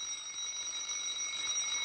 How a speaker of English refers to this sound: The alarm jangled.